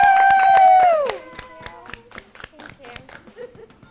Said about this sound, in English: And I think we should give a really big round of applause